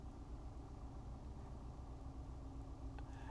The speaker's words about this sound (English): So the master drive cars are red, and now there's like every car that passes is red. So I keep having to look up thinking, that's them. So now it's like I've seen probably 10 red cars go by.